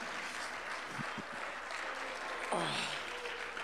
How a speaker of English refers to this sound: Come on, someone clap their hands unto the Lord today. Come on, come on, come on, come on.